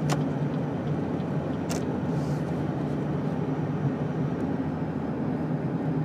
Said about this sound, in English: The car's making... I think there's something going on with my entire sort of AC system. I need to take my car in.